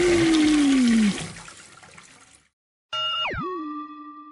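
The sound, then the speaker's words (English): A loud flush of a giant toilet with a rushing, swirling gurgle and a falling tone that drains away over a couple of seconds, followed after a short pause by a separate springy, twangy sound. “You go down the OL and get flushed down this giant toilet.”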